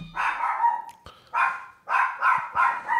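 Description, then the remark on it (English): A dog barks about five times in a quick, irregular series, each bark full, with short pauses between and no one talking. “Can you hear the doggo barking?”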